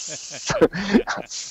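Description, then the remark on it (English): A voice does a sharp, sustained snake-like hiss, broken in the middle by a few garbled voiced sounds before hissing again, fairly loud. “Snakes.”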